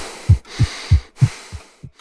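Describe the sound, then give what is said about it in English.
A steady run of six deep, muffled thumps, evenly spaced and fairly quick, a regular heartbeat, over a faint airy hiss with no voices. “REM is a stage of sleep characterized by rapid eye movement, or REM, where your eyes are closed but are still moving around, a regular heartbeat, and increased rates of respiration.”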